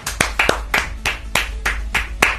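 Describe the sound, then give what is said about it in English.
People clapping in a slow, steady rhythm, about nine sharp, crisp claps spaced evenly over a couple of seconds, with no voices. “Why do I feel like you're patronising me with your claps?”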